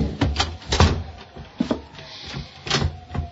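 A closet door being pushed shut after a body is pushed inside, with a series of wooden knocks and thuds spread over a few seconds and a soft rattle between them. No one speaks.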